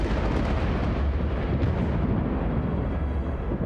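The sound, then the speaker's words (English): A deep, roaring rumble like thunder and an earthquake, loud and steady throughout with heavy low-end weight, crackling faintly on top and never letting up. No voices. “The earth rolled and shook, and the sound of thunder split the air as death itself had no power to hold the Son of God.”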